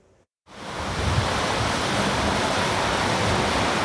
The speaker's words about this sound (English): This is Mission Creek in Kelowna today. Creeks and rivers are running fast and high right now, and the warm weather is speeding up the freshet.